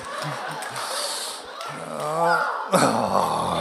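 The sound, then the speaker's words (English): A woman, relaxed on a pillow, imitates a cat's purr: a few short, low rumbling pulses, then a longer steady low vibrating rumble, before a burst of louder, noisier sound takes over. “Oh my, I can hear her purring.”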